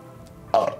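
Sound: burp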